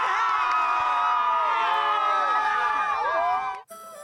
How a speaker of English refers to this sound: The crowds outside Brisbane Stadium celebrating the Matildas' best ever finish at a Women's World Cup.